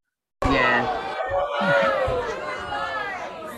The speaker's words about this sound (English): And everyone booing here is booing the... the girl. Yeah. Booing the lady. The audience member.